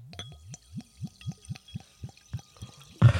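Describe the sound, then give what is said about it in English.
Sparkling water glugs out of a bottle in a quick, steady series of about a dozen rising gurgles, clear, ending in a sudden burst of hissy noise. “Like, now it's getting sparkly.”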